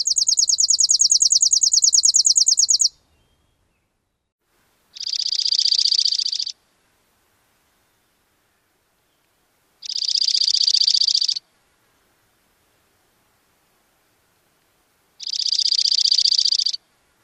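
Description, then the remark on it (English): A chipping sparrow's drier, faster trill at the start is followed by a dark-eyed junco singing a musical, high trill three times, each about a second and a half long with a few seconds of silence between. “Again, first the chipping, then the junco.”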